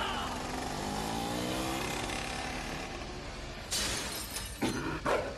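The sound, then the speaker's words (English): A motorcycle engine roars and revs steadily during a stunt jump over 15 buses, its pitch sweeping upward, then a loud crash and several sharp shattering impacts burst out near the end. “When I make a deposit, I want to jump over 15 buses on a motorcycle into a lion's mouth.”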